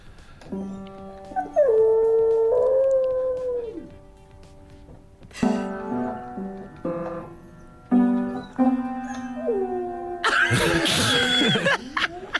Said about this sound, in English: And when they go out to work, the dog starts playing the piano and sort of howling. It's almost singing, really. This happens every day when they leave the dog at home, and they captured it on video.